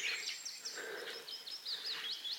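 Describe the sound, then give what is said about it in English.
A willow warbler sings a quick, continuous run of high, sweet whistled notes, many sliding downward, against a faint outdoor background with no one talking. “Willow warbler there.”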